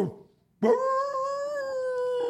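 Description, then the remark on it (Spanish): A person mimics a wolf howl with one long, steady, loud note held for nearly two seconds, rising slightly after a brief quiet start. “Los que están allá afuera en la calle hoy día en Nueva York son lobos. Así.”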